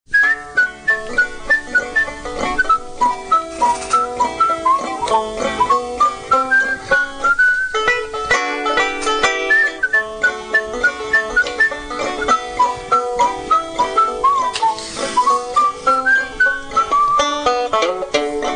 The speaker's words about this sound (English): Once upon a time, there was a farmer walking down the road, and he was whistling a tune to himself. But he says, "Lord, I wish I knew some words to that song, but all I have is the melody."